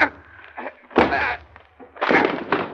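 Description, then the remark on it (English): A door is battered open: two heavy, booming blows with splintering crunches, the second longer and rougher, with a faint low hum underneath. “Oh, break down the door.”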